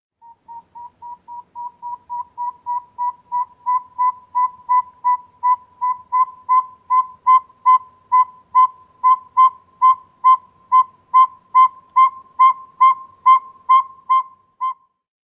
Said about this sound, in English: The northern saw-whet owl are only heard at night, and are low whistle toots about 2 per second. They typically have a regular rhythm. So let's play those back to back again. First, the northern pygmy owl. And then the northern saw-whet owl.